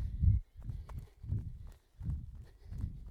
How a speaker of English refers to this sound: You can hear probably my footsteps, sort of quite regular, quite quick, sort of turnover, the bump, bump, bump, bump. That's what I like to hear.